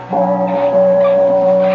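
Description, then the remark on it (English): A Chinese gong in a dining room is struck by Chi-Chi, a Capuchin monkey, and its loud, steady metallic ring hums on without fading, with low shimmering overtones swelling a few times. No one speaks. “The Chinese gong in the dining room.”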